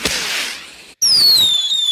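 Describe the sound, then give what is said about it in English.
Fireworks go off: a loud crackling burst fades, then after a brief pause a shrill whistling rocket screams steadily, its pitch slowly falling. “Listen to those fireworks.”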